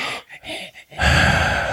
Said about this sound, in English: But I feel like I'm a heavy breather. You know? Are. Yeah, like I just sit here.